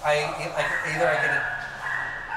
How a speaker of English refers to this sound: We'll wait till the dog is done fighting.